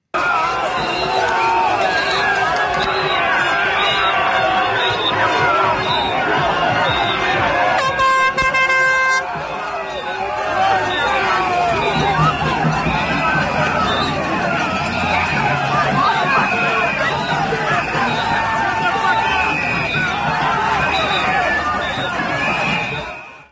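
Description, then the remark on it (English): A dense, noisy protest crowd in New Zealand roars and shouts continuously as speaker Posey Parker is ushered out, with overlapping voices and chanting throughout, broken by a brief burst of blaring horn-like tones partway through. “And I want you to hear this crowd.”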